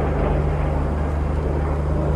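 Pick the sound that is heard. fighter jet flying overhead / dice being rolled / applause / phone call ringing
fighter jet flying overhead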